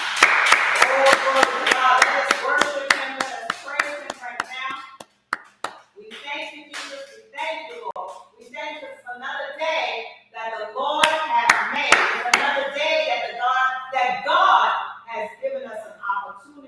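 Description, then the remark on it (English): A church audience claps hands for God after a prayer in a dense, sustained burst of applause that eases briefly mid-way, then surges again, with voices calling out over the clapping. “Let us give God a hand clap.”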